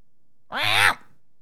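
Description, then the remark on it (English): A single short, nasal meow imitated by a human voice, mimicking a cat brought onto a plane, rising then dipping slightly in pitch, heard alone against near silence. “And every once in a while you just hear meow.”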